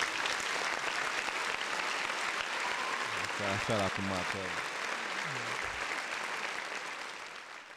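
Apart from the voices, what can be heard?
round of applause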